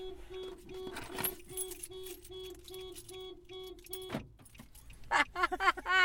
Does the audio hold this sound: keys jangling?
yes